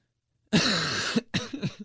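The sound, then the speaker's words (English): A harsh, raspy cough bursts out after a moment of silence, followed quickly by a few shorter, choppier coughs that trail off like throat clearing. “Every time I cough, I think I have cona.”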